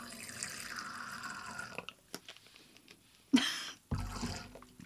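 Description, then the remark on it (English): Fresh squeezed lemon juice, three-quarters of an ounce, is poured from a small squirt container in a steady stream for a couple of seconds, then a few small drips and two short splashing bursts follow, with no talking. “And then 3/4 of an ounce of fresh squeezed lemon. Now, because this is like a little squirty thing, I'm gonna have to pour it in here so I know how much is actually going in.”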